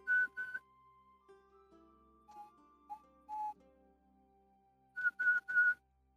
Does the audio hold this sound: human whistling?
yes